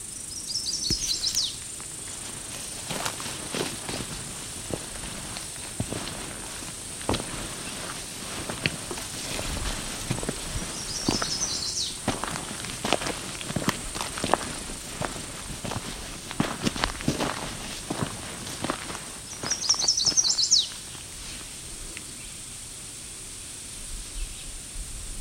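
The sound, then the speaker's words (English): A loud, high-pitched bird call rings out three times from one of a few trees in the flats, about ten seconds apart, each a short burst of rapid notes, with crunching footsteps and a steady hiss running underneath. “I think a bird that loud would be very obvious with only a couple of trees to choose from.”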